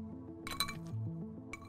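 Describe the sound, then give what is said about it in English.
Ice clinks against a glass of vodka on the rocks in a quick cluster of bright, ringing taps, followed by one more short clink, over a soft, steady bed of low musical tones. “Yeah, some people really don't understand how I can just drink vodka on the rocks, but yeah, Russian blood, it's actually usually my go-to drink.”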